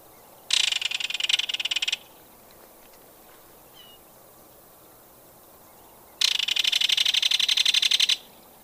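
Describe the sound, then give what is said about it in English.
Two loud, dry rattle calls of a belted kingfisher, each a rapid burst of harsh clicking notes lasting about one and a half seconds, separated by a few seconds of quiet. No one speaks. “Most commonly heard is their rattle call, which is given in a wide variety of circumstances, from close contact calls between mates to alarm calls.”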